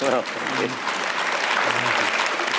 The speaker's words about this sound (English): Yes, well clapped there, ladies and gentlemen.